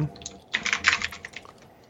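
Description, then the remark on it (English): A burst of rapid keystrokes clatters on a clacky computer keyboard, sharp overlapping clicks peaking midway then trailing off into a few lighter taps, fairly loud with no talking. “Hummy computer, clacky keyboard.”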